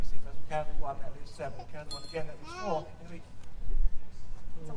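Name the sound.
hand bell ringing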